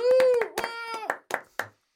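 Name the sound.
applause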